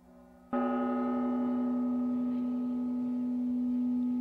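A gong is struck once with a mallet after a brief quiet hum, then rings on with a loud, steady, low-pitched metallic tone and layered overtones that barely fade over several seconds.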